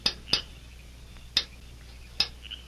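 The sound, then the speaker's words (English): Four light metallic taps with a bright ringing edge, a faint signal rapped at night by a man on the metal bars of a window at the rear of a town jail, in an uneven pattern: two quick raps, a pause, then two more spaced apart, against a quiet background. “Then, satisfied that his movements were unseen, he rapped a faint signal on the bars.”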